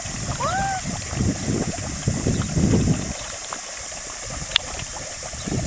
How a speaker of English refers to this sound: There must be hot steam underneath. It's just coming out through the mud, causing bubbles. It comes up to the surface and drops through the mud. Bubbles.